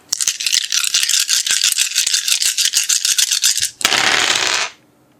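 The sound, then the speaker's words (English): Seven dice, three of them hunger dice, rattle rapidly in a cup for several seconds for a wits plus animal ken roll, a dense clicking shake, then spill out in a short noisy tumble before falling silent. No one speaks. “I want you to give me a wits plus animal kin roll and replacing your hunger dice with your regular dice.”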